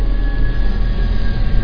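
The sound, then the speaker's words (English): A bus rumbles past with a loud, steady low engine drone and broad road roar, a thin whine running through it. No one speaks. “As the bus goes past”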